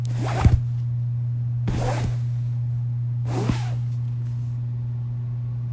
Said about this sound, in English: I only remember digging, digging, and digging, and digging, and digging, what seemed as no end. The continuous shuffle of the shovel.